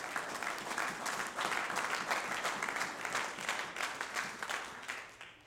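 An audience claps their hands together, a dense, steady patter of many overlapping claps lasting several seconds before tapering off slightly at the end.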